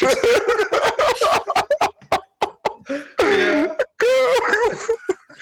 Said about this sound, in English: Just about keeping myself breathing with the cough, but thugging it out.